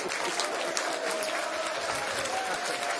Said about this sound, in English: And some applause. Well done.